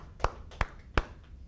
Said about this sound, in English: It's a shorter applause because we don't have the sound bar.